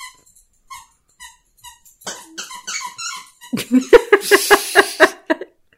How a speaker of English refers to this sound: Our puppy has a pizza squeaky toy.